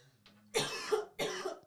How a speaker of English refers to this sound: I'm sorry if I cough. I just got choked on my free tea I just got at Starbucks. I'm choked. You feeling better? No, I feel like I need to cough, so I'm just apologizing ahead of time.